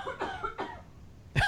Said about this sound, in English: coughs her lungs out.